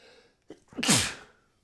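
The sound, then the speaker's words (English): A single forceful sneeze brought on by seasonal allergies: a brief sharp inhale followed by a loud, explosive burst of breath that trails off quickly into quiet. “I need to sneeze.”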